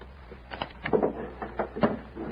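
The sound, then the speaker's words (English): A door swings shut with a few soft wooden knocks and rattles, the latch clunking into place near the end, moderately loud with no one speaking. “Close the door”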